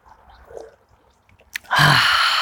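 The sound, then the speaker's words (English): A quiet stretch, a brief soft knock, then a loud, airy slurp as the first cup of hot coffee of the morning is sipped, a sustained breathy hiss that carries to the end with no talking. “and I'm here with my first cup of coffee.”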